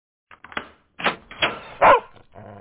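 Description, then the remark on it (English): A dog barks at its owner arriving home, a handful of sharp, loud barks in an uneven burst, the last one the strongest, with no one talking. “That time you got home from a week of double shifts and your dog didn't recognize you.”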